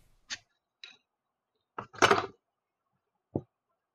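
A bottle of lager being handled and opened to pour into a glass: a few sharp clicks and knocks, then a brief fizzy, clattering burst as the cap comes off, followed by one last click. No voices.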